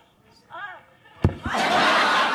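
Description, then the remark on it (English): A brief voice, then a heavy double thump as Heather McDonald loses consciousness, falls back and slams her head on a soundstage floor in Tempe, immediately followed by a loud, sustained roar of audience laughter. “So that thump and all that laughter is Heather McDonald losing consciousness, falling back, and fucking slamming her head on a soundstage in Tempe.”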